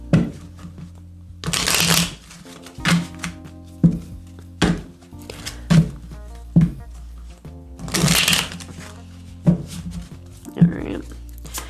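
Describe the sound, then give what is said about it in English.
Tarot cards being shuffled for a reading: two bursts of rapid riffling, around two and eight seconds in, with a string of short taps and slaps as the deck is squared and cut between them. “Let's get you some messages now from the Love Tarot. Just gonna shuffle in here real quick.”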